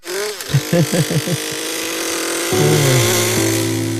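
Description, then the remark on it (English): A small hobby airplane engine buzzes loudly and continuously, revving in several quick pulses before settling into a steady, high-pitched whine that shifts pitch slightly near the end. “The hobby airplane.”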